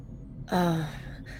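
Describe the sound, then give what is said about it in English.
A pet cat gives a single short meow, a fairly loud, tonal cry that slides downward in pitch and ends quickly, with only faint background noise around it. “My cat is very aggressively into this scene right now.”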